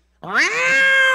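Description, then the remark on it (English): A person imitates an angry cat with one loud, drawn-out meow that rises sharply in pitch and holds as a harsh yowl, with no talking around it. “It's like a cat. The claws are coming out.”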